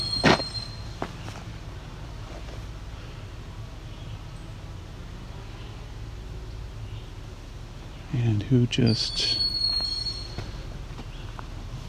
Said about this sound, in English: My guess is this is a young bird who needs feeding.